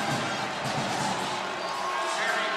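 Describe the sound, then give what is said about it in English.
A volleyball crowd at a Badgers match roars and cheers steadily throughout after a net violation call, a dense, loud wash of many voices with no pauses, rising slightly toward the end. “The crowd reaction was so enthusiastic, it looked like they stuff blocked.”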